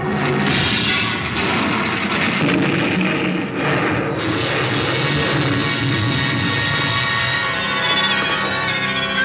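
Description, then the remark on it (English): A plane crashes onto a ship's deck in a loud, sustained roar of crashing noise and rumble, with a whining, shifting engine tone running through it for several seconds. No voices. “Oh, well, that last plane crashed on deck. It must have knocked us all out.”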